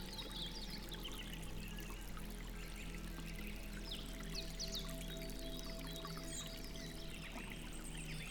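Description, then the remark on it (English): Water runs steadily over rocks in a stream, a continuous babbling trickle with small bright gurgles and splashes, even in loudness, with no voices. “The sound of water flowing over rocks was a natural melody, a lullaby for the soul.”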